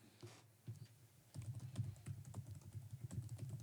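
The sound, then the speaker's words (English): Rapid, irregular clicking of keys on a computer keyboard as a man types, fairly quiet, with a brief pause before a steady burst of typing continues. “I can hear him typing.”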